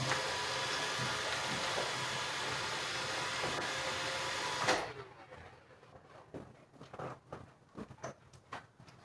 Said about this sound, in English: But we, oh shit, I gotta turn off my Roomba before it ruins the sound. It's all good.